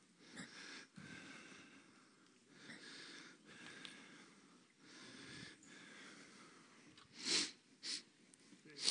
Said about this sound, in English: So if I'm sniffing a lot up here, we pulled the carpet out before, and believe it or not, there was just a little bit of dust involved in that process.